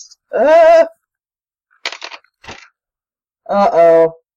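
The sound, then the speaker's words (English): Two dice rattle and clatter in two short, crisp bursts, framed before and after by wavering, bleat-like calls that sound like a sheep or goat. “Okay, so roll two dice and add the two to it.”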